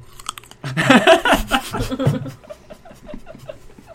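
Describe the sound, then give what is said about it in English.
A loud, close-up crunchy bite into a Wegmans grape, followed by several seconds of wet, rhythmic chewing right at the microphone. No talking. “Can we just loop … eating a grape?”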